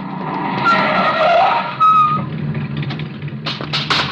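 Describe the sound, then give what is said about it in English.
Tires squeal loudly as a car skids sharply around a corner at the intersection of a street and an alley in a city just after nightfall, hitting a man running across, a sustained screech with engine noise, ending in a few abrupt harsh bursts of sound. “He comes to the intersection of a street and alley just as a car turns the corner.”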